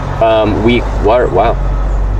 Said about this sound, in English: Fire engine. At least the sirens weren't on.